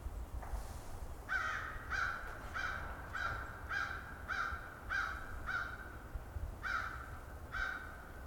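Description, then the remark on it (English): An American crow caws about nine times in a steady, evenly spaced series of harsh calls over a low rumbling background with no talking. “An American crow behind me.”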